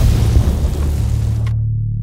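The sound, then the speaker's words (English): A loud explosion at night as the remains of a shack burst into flames shooting high into the sky, a deep, heavy boom that rolls into a sustained low rumble, its crackling upper edge dropping away and leaving only the muffled roar at the end. “I asked, but the answer came from outside, as now there actually was an explosion.”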